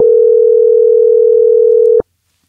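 A single steady electronic ringback tone from a phone line as an outgoing call is placed to a friend, loud, holding for about two seconds before cutting off abruptly into silence. No one speaks.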